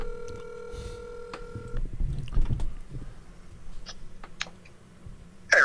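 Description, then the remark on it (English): A telephone line tone hums steadily for nearly two seconds, then cuts off into the muffled rustle and scattered clicks of a handset being handled as it is held up to a microphone during a call. “I'm holding the phone up to the microphone because we're doing our podcast, and you might be able to settle an argument.”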